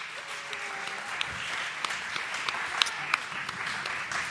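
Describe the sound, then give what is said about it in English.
Audience applause for the show's supporters: a steady wash of many hands clapping, with a few sharper individual claps popping out above the crowd for several seconds, moderately loud and continuous throughout. “Round of applause for the supporters.”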